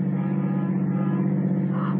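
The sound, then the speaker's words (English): A car engine runs steadily with a low, constant drone while the car is driving; the hum stays even throughout, with no voices. “Stop the car.”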